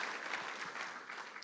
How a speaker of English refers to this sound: Our God is a living God. Come on, let's give God a hand clap for that. Amen. Amen.